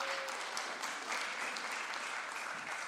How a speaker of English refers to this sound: Thank you both. Let's give them another clap.